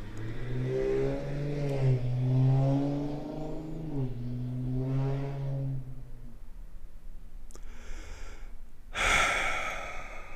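A voice imitates a raspy, droning car exhaust fitted with a loud aftermarket tin-can muffler "fart kit", not a dirt bike, revving in rising and falling waves for several seconds, then trails off into a short breathy snort.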